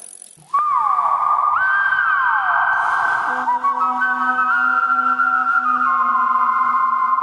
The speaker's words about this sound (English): You like a little whistler or something? I'm a little songbird.